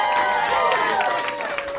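A crowd claps steadily while voices cheer and whoop over it, a loud, dense wash of applause with rising and falling shouts, fading slightly toward the end.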